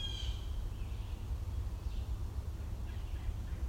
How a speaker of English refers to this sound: That right there. American goldfinch, singing, and blue jay singing. Or blue jay calling. They don't really have a song.